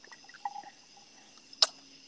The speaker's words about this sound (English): And are you still drinking on the Tito's? I am sipping on the Tito's. Yes, sir. That sounds like a lot of liquid and not a whole lot of ice.